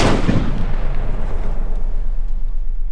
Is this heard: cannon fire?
yes